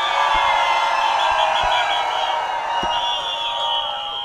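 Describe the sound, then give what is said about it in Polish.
A crowd cheers and shouts in a loud, steady roar that holds for several seconds, with scattered whoops and a few sharp claps or thuds cutting through, making noise with hands up to vote for the tune by a band in the second round of a tune-for-tune contest. “Kto uważa, że tune od … był lepszy? Ręka do góry, hałas!”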